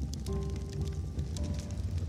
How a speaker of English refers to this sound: So as you continue to listen to the waves outside, begin to follow your breath and intone the words, soft, sleep, deep, peace.